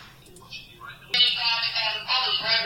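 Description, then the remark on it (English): An accidental pocket-dialled phone call: a muffled line picks up indistinct rustling and faint, garbled voices, then jumps abruptly louder about halfway through into a crackly, smothered jumble of sound. “I think that's what's known as a pocket dial.”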